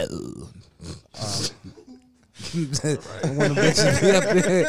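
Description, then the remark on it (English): A person growls and snarls in imitation of a cougar, a rough, throaty vocal burst, followed by chuckling and laughter from other voices. “Nah, that's how Cougars growl.”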